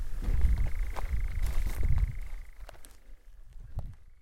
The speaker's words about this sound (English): And we've just had two nightjars over our heads.